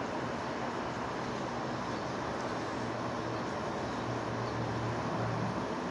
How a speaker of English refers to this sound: Here comes the plane again. I can hear it. He's actually flying further away from the complex, which is odd.